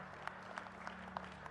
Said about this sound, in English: Well, before I pray and wrap up, can we thank and applaud these guys. Thank you so much.